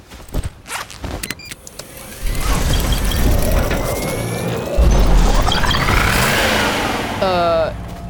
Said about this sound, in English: You just pulled a flying car out of your backpack. That is awesome.